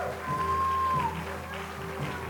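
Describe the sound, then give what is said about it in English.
An audience cheers and applauds in a steady, dense wash of clapping and voices, with a thin whistle-like tone gliding briefly above the noise. “Can we cheer in this place? Celebrate.”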